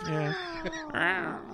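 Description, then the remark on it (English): An angry cat sound effect caterwauls in one drawn-out, wavering yowl lasting about a second and a half. The pitch bends and rises into a harsh, strained wail near the end. “I thought I didn't know we had an angry cat sound effect.”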